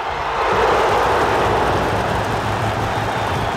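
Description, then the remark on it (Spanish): A huge stadium crowd roars in a sustained standing ovation, a dense, loud wash of cheering and applause that swells after a brief start and holds steady throughout, with no individual voices standing out. “Yo sé que la gente no lo va a ver porque estamos en un podcast, pero imagínese una ovación así monumental, estadio Azteca lleno.”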